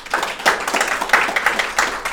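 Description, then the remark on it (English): A short burst of applause welcoming a guest from Utopia Marketing, with several hands clapping in quick, overlapping, uneven bursts. The sound is bright and fairly loud throughout, and no one speaks. “Round of applause.”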